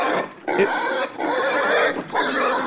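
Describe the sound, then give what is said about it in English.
A voice imitates a pig, with loud, continuous grunting and squealing in three rough bursts separated by brief breaths, fairly harsh. “Give us some piggy sounds.”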